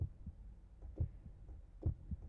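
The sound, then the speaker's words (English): A synthesized heartbeat sound effect from a keyboard's built-in voices thumps in low, steady lub-dub pairs, three beats across the span, moderately loud with no voices present. “There's a heartbeat.”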